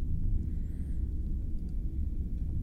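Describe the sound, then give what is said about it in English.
A steady, deep starship engine rumble drones continuously, low and even with no breaks, faint high whistling tones drifting briefly above it. “That's what the sound of the engine time is, Mr.”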